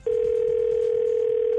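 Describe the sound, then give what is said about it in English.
A steady, unbroken telephone tone hums at one pitch for over a second, clear, like a line connecting before anyone answers, as a prank call to a mother connects. No one speaks. “Phone tapping mom. Let's listen in.”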